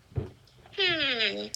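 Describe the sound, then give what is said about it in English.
A single drawn-out cat meow, loud, sliding downward in pitch over under a second, preceded by a brief soft murmur. “And a cat.”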